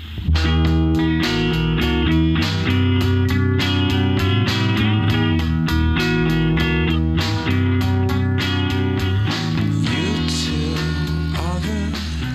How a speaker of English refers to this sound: So it's going to be somewhere in between there with a lot more distortion. I like the guitar work that they're doing on …